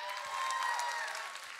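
An audience claps steadily in a dense, continuous wash of applause, with faint cheering tones mixed in, fairly loud and sustained for a moment before easing slightly. The applause welcomes newcomers at an evening gathering and honours the person who brought the most friends.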